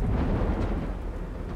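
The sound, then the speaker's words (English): A thunderstorm off the Outer Banks near Roanoke in August 1590, with a deep, continuous rumble of thunder beneath the steady hiss of heavy rain, fairly loud and unbroken throughout, with no voices. “The Hopewell reached the Outer Banks on August 1st, 1590, but a storm made it too dangerous to journey closer to shore.”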